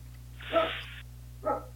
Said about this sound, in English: My dog is going nuts. I hear it.